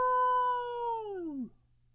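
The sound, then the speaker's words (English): A single wolf-like howl holds a steady, fairly high pitch for over a second, then sags downward and breaks off, leaving only a faint low hum behind. “Wolves.”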